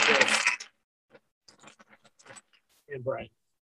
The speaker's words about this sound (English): You want to roll those dice any louder? We're not rolling them. I'm not sure they're good. We could. We're shuffling them.